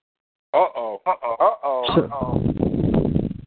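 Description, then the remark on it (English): A voice comes through a thin telephone line, then smears into a loud, churning wash of echo and feedback that swallows the speech and holds until the end. “Is that we got an echo going on.”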